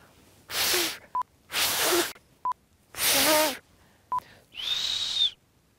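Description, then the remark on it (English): Four loud, breathy whistled phrases of the La Gomera whistled language ring out one after another, sending a message across deep volcanic ravines, the last one rising into a clear high tone, with short beeps between them. “But if you whistle, it only takes seconds.”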